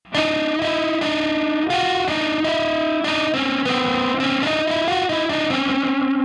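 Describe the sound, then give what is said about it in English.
A buzzy, distorted synth melody played as a detuned minor second interval, two clashing, closely spaced pitches, giving a sour, wobbling, eerie sound like a warped ice cream truck jingle. Steady and loud throughout, with no voices. “And it just sounds like this ice cream truck from a horror movie.”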